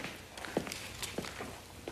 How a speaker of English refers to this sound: really building tension here by just listening to footsteps. See, no music.